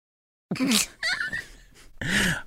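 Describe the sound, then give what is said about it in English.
A loud sneeze breaks the silence, preceded by sharp breathy gasps and ending in a forceful burst, with no talking around it. “God bless you.”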